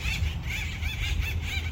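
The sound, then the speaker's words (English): Acorn woodpeckers squawk overhead as males fight to become the new alpha male of a family group and try to steal acorns from a granary tree, a rapid, continuous series of harsh, raucous, mid-to-high pitched calls overlapping one another over a steady low rumble, with no voices. “You can hear them squawking above me.”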